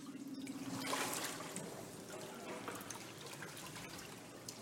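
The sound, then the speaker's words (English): Water trickles and splashes softly in a warm baptismal pool, a continuous dribbling with small irregular drips, swelling briefly near the start and then settling to a steady, fairly quiet flow. “This water is probably the warmest I have ever been in for this water.”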